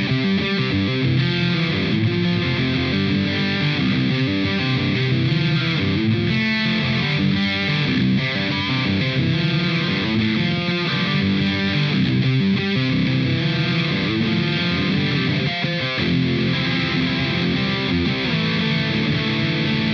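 Heavily distorted electric guitar played through a Savage 120 tube amplifier on Channel 2, thick and saturated, chugging and ringing steadily for the full stretch at a loud level with no voices.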